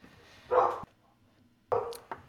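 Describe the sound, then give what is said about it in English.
Dogs barking in the next room: two short, muffled bursts of barking separated by a brief pause, fairly quiet with no talking over them. “Yeah, I got four dogs in the room over from me, so something just upset them.”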